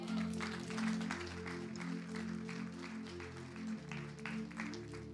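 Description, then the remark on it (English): A crowd claps steadily for several seconds as a hand clap for God, a dense wash of hand clapping over a sustained low musical drone that holds beneath it throughout. “You guys going to give him a hand clap?”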